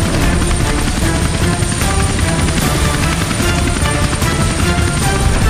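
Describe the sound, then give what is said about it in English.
A waiting helicopter at the burning Wayne Manor roars, a loud, steady wash of engine and rotor noise that holds constant the whole time, with no voices over it. “And with that, he rushed from the burning manor to a waiting helicopter.”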